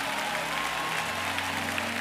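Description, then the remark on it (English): A church audience claps their hands to give God glory after a declaration of faith. It is a dense, sustained wash of applause, steady and fairly loud throughout, with a low hum beneath and no speech. “Those of you who are complete alignment in faith over that declaration, would you now clap your hands and give God glory for it now?”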